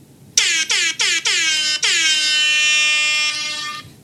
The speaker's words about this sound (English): There you have it. Rap air horn ad. Never misses. Well, it's missed a couple of times, but... Have we? Yeah. No, the actual horn. Yeah, the horns. Yeah. Sometimes I push it, sometimes we're late.